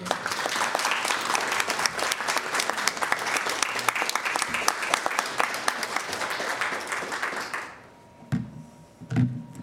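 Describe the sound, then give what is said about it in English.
A dense burst of audience applause for the Iowa City Bike Library for its work in the community, many hands clapping loudly and steadily for several seconds before it stops abruptly, followed by a few quiet bumps and murmurs. “a warm round of applause for their work in the community.”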